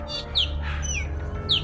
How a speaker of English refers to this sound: She is the most gifted mimic of all bird species. And while she hasn't learned any speech yet, she's capable of saying hundreds of phrases in dozens of languages.